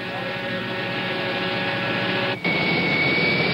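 Jet airliner engines roar steadily at close range, a dense rushing drone with a high whine on top, briefly cutting out for a moment before the roar resumes.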